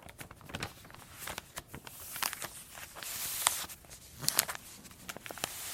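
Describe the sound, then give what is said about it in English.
Book pages turning over and over: soft, crisp paper rustles and flicks in an uneven rhythm, each swish bright and airy, with quiet pauses between and no voices. “You are listening right now to Pages Turning.”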